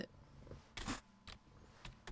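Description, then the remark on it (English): Clicky keyboard keystrokes: a handful of sharp taps and short bursts of clacking come at an uneven pace over a low background hum, with no one speaking. “Furiously typing.”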